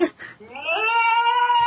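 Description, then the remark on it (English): A cat lets out one long, drawn-out meow that rises in pitch and then holds steady, loud, after a brief burst of voice at the start. “Cats that go”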